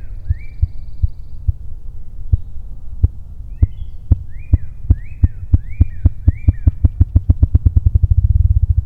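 A male ruffed grouse drumming, a sound made entirely by its wings to mark its territory: deep, muffled thumps start slow and evenly spaced, then speed up into a rapid, throbbing roll that swells louder at the end, with faint bird chirps above.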